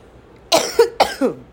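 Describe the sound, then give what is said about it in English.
Two harsh coughs in quick succession from a person who is unwell, each a sharp burst trailing into a rough rasp, with no talking around them. “Oh my god, I'm not sorry for the coughing, okay?”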